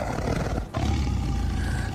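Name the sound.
big cat roar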